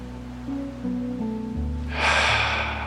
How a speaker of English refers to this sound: And let's breathe into the belly, feeling those hands rise as the belly expands. And just sighing as you exhale. So again, breathing in, feeling the belly expand.